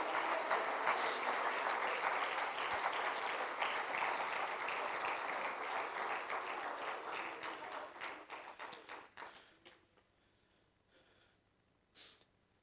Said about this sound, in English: Why don't we all stand and clap our hands together tonight? Hallelujah! Hallelujah!